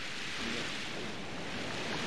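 ocean waves surging

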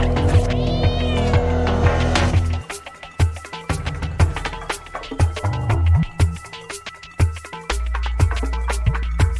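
cat meowing

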